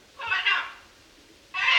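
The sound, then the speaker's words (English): A parrot gives a harsh, raspy squawk that sounds like screaming "Oh my God," pauses for about a second, then starts another loud, scratchy call that cuts off abruptly, with no other sounds around it. “this parrot belonged to the Fellowship's leader, Robert. He kept it in his home at Apollo, but apparently he got sick of the sounds it made”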